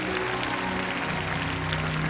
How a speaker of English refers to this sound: Man, you ought to give God a clap for all these people. Bless you, honey. You can do a little better than that.